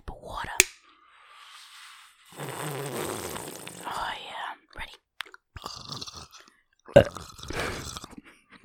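Wet, crunchy bites of a pickle right up against the mic, with loud smacking chews and sharp crackling bursts, broken by brief pauses and a bit of muffled whispering.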